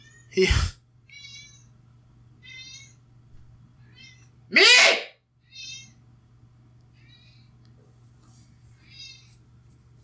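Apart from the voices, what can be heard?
cat meowing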